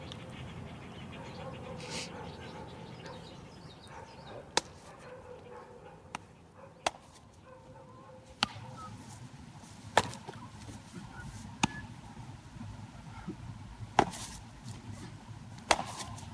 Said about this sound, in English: that was the sound of summer, was like the sound of a ball getting into a glove.